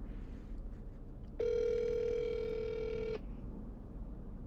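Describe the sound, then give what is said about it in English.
A single steady electronic ringback tone from an outgoing morning phone call to someone's mother sounds for nearly two seconds, clear and moderately loud over a low background rumble, with no talking. “So let's see if my mom will answer her phone.”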